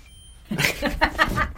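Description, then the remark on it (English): A washing machine loaded with a sweatshirt and a Tide Pod, set to normal casual, beeps as it starts: a quick run of four or five short, fairly loud electronic chirps at a mid-high pitch, with no talking. “Close the door. Turn the machine on. Put it on normal casual. Hit start.”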